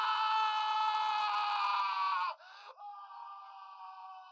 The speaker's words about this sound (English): Yeah, did you enjoy that? Look at that. There's unexpected Cage scream of the week.